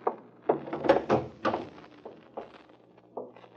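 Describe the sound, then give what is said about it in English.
A back door leading from the kitchen, latched from the inside, is tried and won't open: several dull thunks and rattles as it's pushed and pulled against the latch, with a few quieter knocks trailing off. “Oh, the back door was latched, so...”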